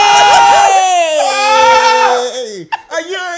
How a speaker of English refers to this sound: Oh my god, I did the Kevin Hart scream.